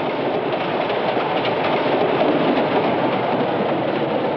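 A train rumbles steadily as it pulls up to a station, a dense, continuous roar of wheels and carriages with faint rhythmic clatter. No one speaks.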